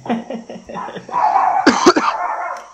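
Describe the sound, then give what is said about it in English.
Dogs bark at a knock on the door in a quick, agitated run of sharp yaps, with a couple of louder, harsher barks near the end and a steady high hum underneath. “It's my dog's going mad at summer.”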